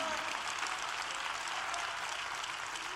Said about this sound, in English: Come on, clap your hands.